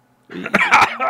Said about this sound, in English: You seem to have a nasty cough there